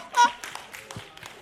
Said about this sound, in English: A lot of claps for divorce. I like that.